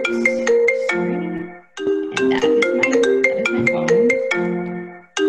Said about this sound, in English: Sorry about that. Another interruption. You should have your phone off.